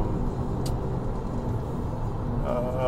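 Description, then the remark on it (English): A steady, loud low rumble of road traffic heard from inside a car sitting in heavy, stopped traffic, with a brief hiss early on and a faint rising engine whine near the end. “I'm in traffic right now, and all I see is a sea of brake lights, which sucks.”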